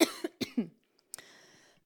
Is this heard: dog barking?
no